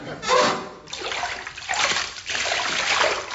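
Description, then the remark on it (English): Several bursts of splashing water as people drop one after another into an isolation tank of salty water, fairly loud, with sloshing and dripping between the splashes. “Right, everyone into the isolation tank.”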